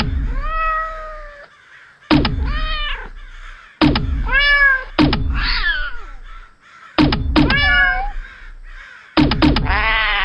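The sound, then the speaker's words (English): A string of loud cat meows, about six in a row, as cats are fired from a cat launcher, each one starting with a sharp thump and some sounding harsh and strained, with short gaps between them. “It's not a gun. It's a cat launcher!”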